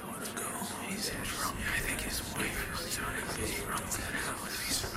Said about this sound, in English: Fellow Nautic bar patrons are whispering and looking in his direction. He can only hear select words due to the crowd noise.